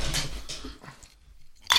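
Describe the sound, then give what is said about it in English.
Ice cubes tumble into a glass with a brief crunchy rattle, then go quiet for a moment before one last sharp clink. No one speaks. “Get some ice going. Gotta get some ice.”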